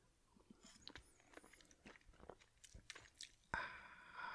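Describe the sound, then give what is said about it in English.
Quiet mouth sounds of someone sipping hot morning coffee from a mug: soft wet smacks and clicks, then a louder, breathy slurp near the end. No talking. “and hopefully eventually for you to go to sleep as I drink a sip of my morning coffee.”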